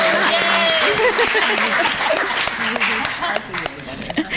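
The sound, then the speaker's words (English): An audience claps steadily for about four seconds, a dense, even patter of many hands, with a few voices calling out over it early on before the applause thins slightly. “we can clap if you want.”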